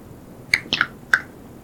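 Several crisp finger snaps, about four, come in an uneven sequence, each a sharp, bright click that fades at once. No one is talking, and a faint low hum sits underneath.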